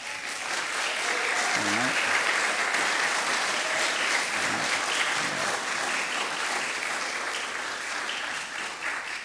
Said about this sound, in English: Thanks, guys. And I know there's a few others that aren't here today that have served. And on behalf of, and we're clapping for you guys, and we're clapping for you on behalf, just as a representative of the many, many men and women in our country